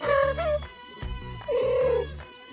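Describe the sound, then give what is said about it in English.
Two cats meow in turn, each drawn-out, wavering cry answering the other, with a short low thump between them; the calls are fairly loud, with no talking. “There's two cats talking back to each other.”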